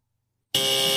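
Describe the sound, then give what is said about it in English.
Silence, then a quiz game buzzer cuts in abruptly and holds a harsh, loud, steady electronic buzz with bright high tones for about half a second, as a player buzzes in during a trivia game. “Oh no! I just got buzzed in again.”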